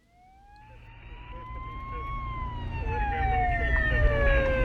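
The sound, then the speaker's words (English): An ambulance siren wails in a slow rising and falling sweep, growing steadily louder as it approaches over a low rumble of engine and road noise; the ambulance is en route to a hospital with a trauma alert. “University Hospital's ambulance 48 en route to you with a trauma alert.”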